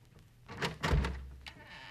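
A door latch rattles and the unlocked door of a run-down dwelling is pushed open, with a short creak and a dull low thump; no one speaks.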